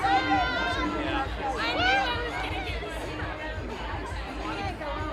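A small crowd of about five Joe Biden supporters chatters steadily, several overlapping voices forming a lively, high-energy babble with no single speaker standing out, continuous throughout.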